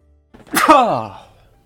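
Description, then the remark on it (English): A single loud sneeze: a short intake, then a sharp, noisy burst that trails off into a voiced, falling 'choo' lasting about half a second. “Gotta sneeze, hang on.”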